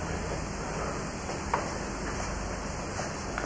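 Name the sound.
rain falling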